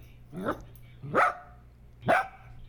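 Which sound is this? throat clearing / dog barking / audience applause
dog barking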